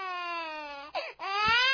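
A baby wails in a long, high, strained cry whose pitch slowly sinks, breaks off with a brief catch of breath, then rises into another loud sustained wail.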